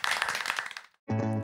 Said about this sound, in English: Well, I think we'll bring it to a close there, and we'll thank you. We'll give yourselves a round of applause.